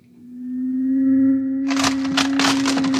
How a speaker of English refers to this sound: He's burning it. He's burning a hole right through the door.